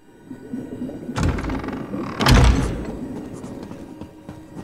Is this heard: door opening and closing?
yes